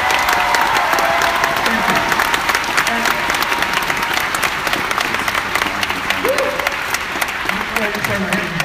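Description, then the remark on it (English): A crowd applauds the event's staff steadily, a dense wash of clapping that holds at an even level throughout, with occasional scattered whoops rising above it. “So before I go further, would you give a great round of applause for these guys?”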